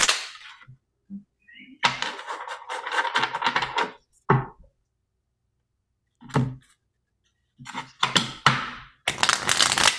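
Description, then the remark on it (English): A deck of tarot cards being shuffled for a three-card reading: several rapid, crackling riffle bursts separated by short pauses, the longest flurry early on and another toward the end, with no one speaking. “You're a pro shuffler.”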